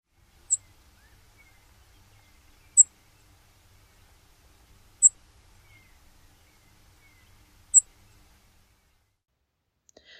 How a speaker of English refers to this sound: For comparison, here is a call note of the brewer sparrow, another bird in this genus.